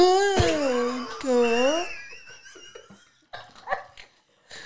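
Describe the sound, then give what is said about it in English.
Someone imitates a whale call, 'speaking whale' as Dory does in Finding Nemo, with two long, wavering, drawn-out vocal moans, loud, followed by quieter murmuring voices and a brief laugh. “Oh, my God, can you speak whale? Yes, as a matter of fact, I can.”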